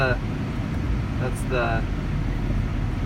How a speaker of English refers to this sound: That's the air conditioning. It makes it cooler in here, but it's very hot.